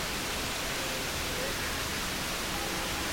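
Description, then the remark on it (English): A waterfall in a cavern cascades into the path of a boat in a steady, unbroken roar of rushing water, full and even throughout with no pauses or voices. “Up ahead, a waterfall cascades into our path.”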